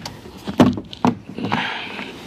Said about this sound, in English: And I dropped my phone.